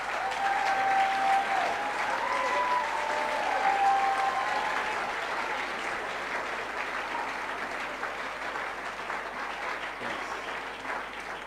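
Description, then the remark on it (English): A crowd at a conference applauds steadily for about eleven seconds, a dense, even wash of many hands clapping at once, loud throughout with a few faint whistles in the first seconds. “Can you clap your hands?”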